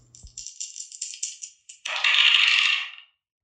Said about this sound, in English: And guess what? We're going to roll these dice. We're going to see what we're going to talk about today. Roll them.